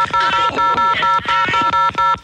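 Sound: telephone dialing and ringing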